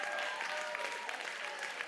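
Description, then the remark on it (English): An audience claps steadily for about two seconds, a dense wash of many hands at a sustained, fairly loud level with no voices standing out. “Come on, y'all clap.”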